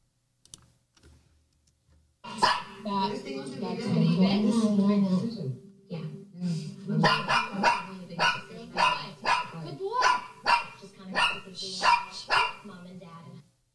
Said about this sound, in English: So a little bit of background noise there, but you can still hear the barking. Right, pretty you can, clearly. Yeah. So I would say there's not a lot of breathing going on in between those barks.